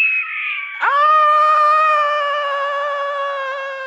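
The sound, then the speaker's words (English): A cat lets out one long, loud yowling meow, starting high, dipping sharply, then holding a drawn-out wailing tone for several seconds, with no talking. “What a silly cat.”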